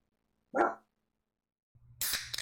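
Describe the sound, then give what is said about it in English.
A single sharp dog bark rings out, then silence, followed by a low droning tone and a sudden burst of loud, hissy noise. “Well, what if I could teach my dog to cue the roll call?”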